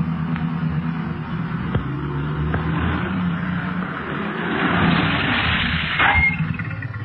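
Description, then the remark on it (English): Several police car engines rumble, a low steady idle that swells briefly as the cars pull up at a hill, then settles as they come to a stop. No one speaks. “The other machines are stopping too”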